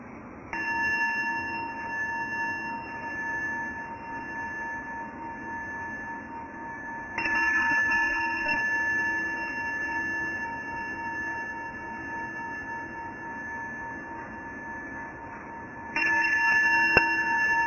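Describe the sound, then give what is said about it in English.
A meditation bell is struck three times at slow, even intervals to begin a mindfulness practice, each strike blooming into a long, shimmering resonance that hangs in the quiet. No one speaks. “And we'll practice receiving the sound of the bell to begin.”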